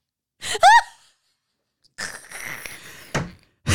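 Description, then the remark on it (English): An exaggerated bout of deep Lamaze-style breathing by a woman: a sharp voiced gasp, a pause, then a long noisy exhale followed by two quick forceful breaths, like someone pushing through pain. “She's already deep Lamaze breathing through this.”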